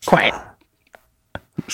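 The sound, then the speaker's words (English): A parrot mimics human speech it learned from its owner, rasping out a short two-word phrase, followed by quiet gaps and a few brief, sharp vocal clicks. “this is a parrot who apparently has learned from the owner.”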